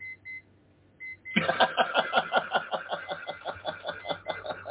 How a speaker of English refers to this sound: There's a beep. Yeah, it's just, I'm trying to shut it down. It's one of my alarm clocks going off. So it's all right.